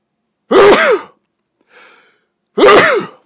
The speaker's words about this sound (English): Excuse me. It's not coronavirus. I'm in a sauna. It just makes me sneeze every now and then.